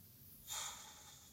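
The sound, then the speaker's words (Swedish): A single deep exhalation during a breathing exercise, a soft breathy whoosh of air pushed out through the mouth, starting with a slightly stronger rush and then trailing off steadily. Fairly quiet, with no talking. “Andas ut.”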